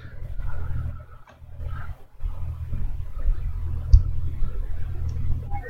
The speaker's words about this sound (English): It is a parrot. There is a metal band with a parrot as its lead singer.